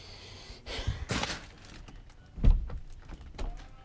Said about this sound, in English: Can you shut the door, please? Thank you.